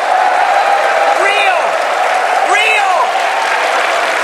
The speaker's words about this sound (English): Now, I have to tell you, some of those people are your own people and are cheering, Kevin. Well, Jim, we've got some Starbucks partners who proudly wear the green apron. These are veterans and military spouses